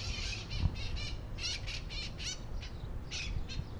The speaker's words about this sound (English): oh, those are the parrots. It's the flock of parrots that live in Northeast Los Angeles.